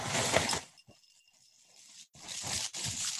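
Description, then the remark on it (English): Crisp, rattling rushes of dry cereal, which looks like cornflakes, pouring into a bowl, a loud burst, a pause with faint tinkling, then two more noisy pours. “I'm pouring the cereal.”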